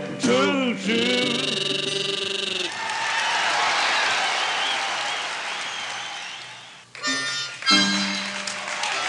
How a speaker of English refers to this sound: Give me a little clapping, and that makes me feel good.